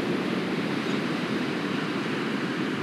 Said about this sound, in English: bouncing off this theme of being by the water, being by the ocean, so you may be able to hear it through the microphone. Very fortunate to live near the ocean on the Sunshine Coast, where a lot of the year it's very accessible and very beautiful.